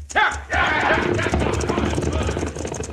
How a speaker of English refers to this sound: Now, with the stage escaping down the mountain, all the outlaws but one mount their horses.